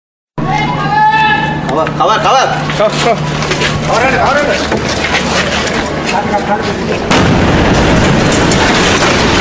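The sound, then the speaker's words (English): A sudden, loud bomb blast from the Easter Sunday suicide attack at Zion Church, Sri Lanka, on April 21st, 2019, erupts from silence, followed by a sustained roar of chaotic noise with distressed voices wailing and shouting throughout, and a second surge of rumbling near the end. “These are the sounds of terror. Explosions, sirens, wailing, and then deafening silence.”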